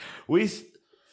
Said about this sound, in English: That's it. I'm out. That's a wet cough. I'm out. No, it's a wet cough. A wet cough. It's fine, guys.